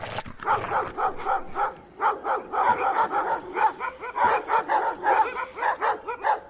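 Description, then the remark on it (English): A dog barks and whimpers in a rapid, agitated series of yips and short cries, fairly loud, continuing almost without pause for several seconds with no talking. “In slow motion, I saw the nearest dog's eyes pop out of its head, as if some invisible hand was squeezing the back of its skull.”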